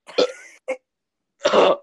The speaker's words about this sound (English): Intensively coughs.